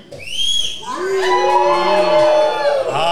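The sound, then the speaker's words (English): A crowd at Hopheads in Yarraville lets out a collective woo, many voices rising together in a loud, sustained high-pitched whoop for about three seconds, with a few brighter whistle-like voices standing out above the mass. “Let's have a collective woo.”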